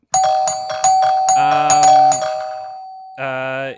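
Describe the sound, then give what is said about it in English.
A doorbell rings with a bright, multi-note electronic chime, a quick run of pinging tones swelling into a sustained ringing chord that fades, then one more buzzy tone sounds at the end. “Go and open the door. Go say hi.”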